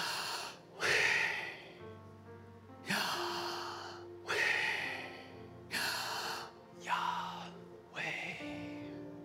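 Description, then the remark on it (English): Slow, deliberate breathing in and out, clearly audible, with six or so airy breaths in a steady rhythm over soft sustained background music. “And do you know the reason why it's spelled this way is it's trying to grasp the understanding that just breathing in and breathing out, you're pronouncing the name of God.”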